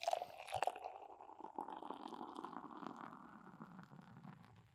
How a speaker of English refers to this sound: We got the first beer poured out. This is the Fiel al Estilo from Avery Brewing Company, 2015 rendition, coming in at a 9.9 ABV.